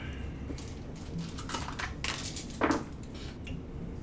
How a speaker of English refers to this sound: Okay, pick up your dice and roll.